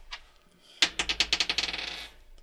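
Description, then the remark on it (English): Purple dice clatter onto a hard table during a tabletop role-playing game, rolling a natural 20: a sharp first hit, then a quick run of about ten bright, bouncing clicks that speed up and fade as they settle, clear with no talking. “Man rolling the natural 20, but is at disadvantage.”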